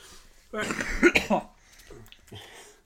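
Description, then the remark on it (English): A loud burst of harsh coughing, a couple of rough hacks run together over about a second, then quieter breathy, throaty sounds trailing off afterward. “Well, this is the first time you've coughed.”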